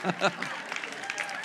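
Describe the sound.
A crowd claps in a brief burst of applause, with a couple of louder hits at the start and a dense patter of hands continuing under cheering voices.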